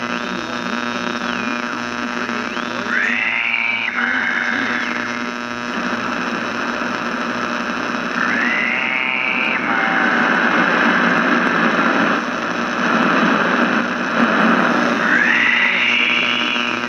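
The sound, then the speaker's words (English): Loud, steady static hisses and crackles from a radio's speaker over a low electrical hum, with warbling tuning whines rising every few seconds. No voices come through. “As the radio explodes into life again, static hissing out of its speaker, and also a voice that comes through.”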